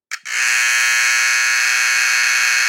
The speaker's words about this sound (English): And then battery-operated buzzers were soon to follow, which is kind of funny to think that you had to actively replace a battery to maintain something that might have sounded like this.